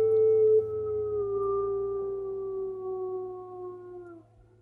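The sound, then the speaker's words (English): A wolf gives one long, steady howl that drifts slowly downward in pitch for about four seconds before breaking off, heard alone over a faint low hum. “Perhaps this is the hidden meaning in the howl of the wolf, long known among mountains, but seldom perceived among men.”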